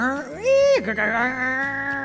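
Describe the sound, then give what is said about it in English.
A voice mimics the screech of the Interwatt fax machine as Mr. Mouser faxes over work: a warbling, strained tone that swoops up, holds high, drops sharply, then drones on unevenly for about two seconds, fairly loud. “JF Cat had never heard a fax machine before. It sounded like the Interwatt was trying to cough up a rusty harmonica.”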